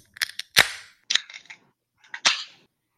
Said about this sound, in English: So with that, gents, let's pour our beer of the week, the Live Oak Hefeweizen.